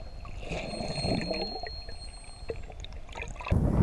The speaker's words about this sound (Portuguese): Este lugar onde eu estou chama-se Praia. Eu adoro ir à praia no verão. E aqui atrás de mim temos o mar ou oceano. Eu adoro tomar banho de mar e nadar no mar, especialmente um mar de águas cristalinas e calmas, como este daqui.